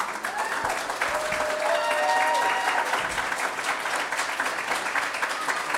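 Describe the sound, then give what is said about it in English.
A crowd at a candidates' forum applauds steadily for several seconds, a dense, even wash of clapping that stays loud throughout, with faint voices and a few cheers mixed underneath. “And this, you guys beat me to the punch on the applause.”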